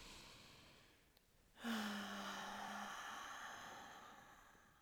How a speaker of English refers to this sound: It's a lot of breathing in this episode, I can feel it. But to me, this is the easiest way to feel my body.